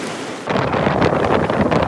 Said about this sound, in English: But then, right on cue, the rain stopped. But the wind came up fast. Waves crashed over the seawall in Stanley Park, and huge tree branches came down, including at several schools.